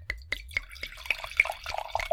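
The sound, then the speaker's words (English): Wine from a freshly opened bottle glugs and splashes into a glass in a steady stream of irregular gurgles, fairly quiet, with a faint low hum underneath and no one speaking. “Okay, give that a nice pour.”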